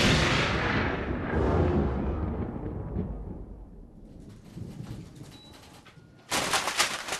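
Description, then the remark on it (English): A loud, booming lightning strike crashes in and rolls into a rumbling decay over several seconds, then a second sudden, harsh crackling burst erupts near the end. No one speaks. “Ace has been struck by lightning!”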